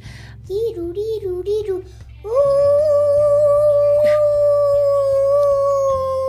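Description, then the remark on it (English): A small puppy gives a quick run of high, wavering yips, then lets out one long, steady howl, loud over a low, constant background drone. “Or she could have asked this little puppy dog next to me, but let's see what she does.”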